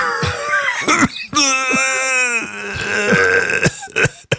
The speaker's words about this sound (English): Hey, that was the slobber cough, you know what I'm saying? We got the elastic slob just hanging out your mouth.